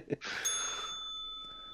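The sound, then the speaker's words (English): A single bell is struck once, its bright metallic tone ringing on and slowly fading, just after a brief soft thump. No voices are heard. “Ring the bell.”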